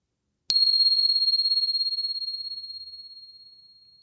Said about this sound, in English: So once again, settling in. Here comes the bell.